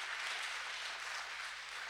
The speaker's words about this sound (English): And see, it's easy to clap for that here, but out there, we feel that pressure.